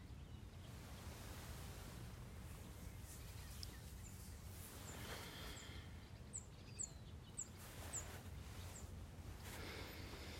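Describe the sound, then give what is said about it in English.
A bird sings outdoors in short, high chirps that repeat through the second half, set against a steady, rushing wind-like background noise. No one speaks. “Well, that was interesting because the bird just stopped.”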